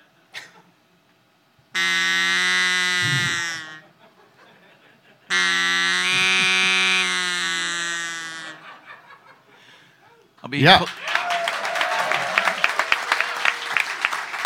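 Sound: duck call being blown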